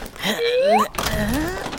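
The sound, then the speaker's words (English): A closet door being pulled out, giving two drawn-out creaking squeals that rise in pitch, one after the other, over a fairly loud, rough scraping background. “Let me just pull this door out.”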